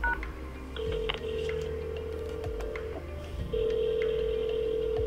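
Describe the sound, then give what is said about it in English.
Short touch-tone keypad beeps, entering a phone number on Wilfrid Laurier University's phone system, sound over a steady phone line hum, followed by a louder sustained tone that begins partway through and holds to the end, with no voices. “If you have finished entering the phone number, press number sign.”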